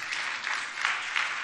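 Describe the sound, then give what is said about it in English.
Steady applause from a large church audience, a dense patter of many hands clapping at an even level with no voices over it. “This is where you're supposed to clap, by the way.”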